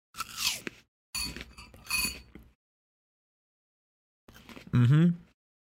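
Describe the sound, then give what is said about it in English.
Loud crunching bites into a crisp apple, followed by wet chewing in two bursts, a pause, then a satisfied hum-like vocal sound with more munching near the end. “I'm going to take a crunch out of this apple.”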